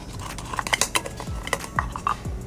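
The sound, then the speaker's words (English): A utensil stirs spinach, cheese, pepper and salt together in a bowl, with repeated clinks and scrapes against the sides in an uneven rhythm, fairly clear, no voices. “Now I'm gonna mix it all up.”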